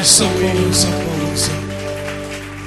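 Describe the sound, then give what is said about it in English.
An audience at a Christian church service in 2022 claps along in a steady rhythm, several sharp bursts of applause-like clapping over a sustained, droning musical tone, fading slightly as it continues. “Oh, I think you could have, you could clap your hands.”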